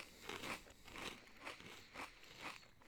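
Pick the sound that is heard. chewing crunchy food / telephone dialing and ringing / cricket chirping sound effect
chewing crunchy food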